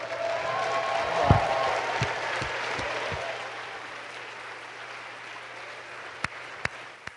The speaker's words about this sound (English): Now, I'd like you to do us all a favor, and we're going to welcome all of those of you who are fourth year seniors and above. Will you stand and let's give them applause?